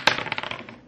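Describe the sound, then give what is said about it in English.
A battle die is rolled: one sharp knock, then a quick run of light clicks that tumble and fade as it settles on a hard surface. Fairly loud, with no talking. “Maybe I should switch over to something else. This is not... Good idea. Switch the dice.”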